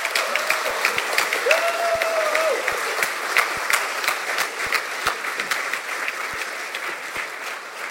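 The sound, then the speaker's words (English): A large audience in Christchurch applauds steadily to welcome the writer Paula Morris, a dense wash of many hands clapping at an even loudness for several seconds, with a brief whistle-like tone rising above it early on. “Ladies and gentlemen, please welcome, with a hugely sympathetic round of applause, Paula Morris!”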